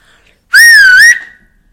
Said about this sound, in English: Tiki shot a sharp whistle into the air, and Taki landed his big soft body with a thump on the ground next to Bunky.